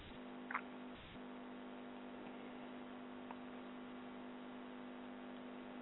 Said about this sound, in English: I think she's having some type of interference.